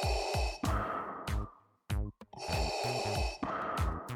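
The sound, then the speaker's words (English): Heavy, rasping breathing through a black space mask, loud, with two slow inhale-exhale cycles separated by a brief pause, each breath hissing and rumbling harshly. No talking. “The figure walked up to the pair of teens, breathing loudly through a black space mask, making the most horrible sound they had ever heard.”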